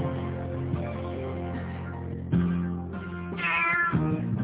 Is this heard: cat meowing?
yes